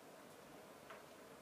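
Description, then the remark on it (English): Faint, soft clock ticks, a couple of light clicks spaced evenly apart, set against a steady hiss of quiet room noise with no one talking. “And just come aware of the sounds around you, the wind, the clock ticking, and you may open your eyes.”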